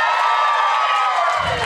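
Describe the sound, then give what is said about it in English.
An audience in Portland cheers and whoops loudly over dense applause, a steady wash of high-pitched shouts and clapping that holds for the whole moment, clapping to vote for talking about pole dancing. “Clap if you would like to talk about pole dancing.”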